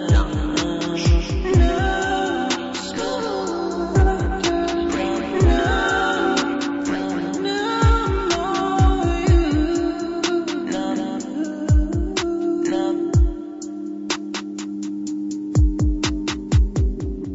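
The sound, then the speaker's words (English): A music track plays steadily on its own, with punchy, regular drum hits over sustained chords and a low bass line, the sound carrying an added echo. No voices are heard. “Go ahead, add that echo in there, just a little shine.”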